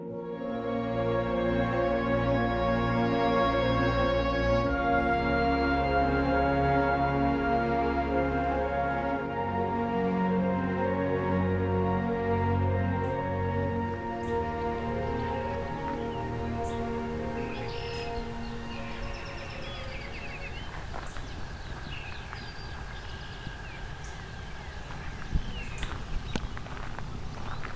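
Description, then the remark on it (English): A dense, steady drone from clouds of non-biting midges hums in layered tones for the first half, then thins out, leaving faint bird chirps and soft footsteps over a quieter background. “So I'm in a spot with so many midges that you can actually hear them as a background hum.”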